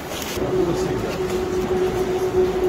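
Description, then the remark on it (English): Busy ambience at Waverley train station in Edinburgh: a steady low engine hum from an idling train sits under a constant wash of echoing background noise and faint murmuring voices, continuous throughout. “Yeah, I thought I would just give you a wee tour of Waverley train station on this historic day.”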